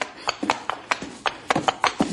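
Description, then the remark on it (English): Hooves clip-clop in a quick, uneven rhythm as a horse charges at a man, about ten sharp knocking strikes over two seconds with no talking. “Look out for that horse, boss! He's coming for you!”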